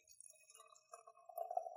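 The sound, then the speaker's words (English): Inky purple wine pours softly into a glass, a quiet trickling gurgle with a faint ringing tone that swells a little louder toward the end. No one speaks. “Let me get your glass and pour some of this inky wonder, as we described it, right?”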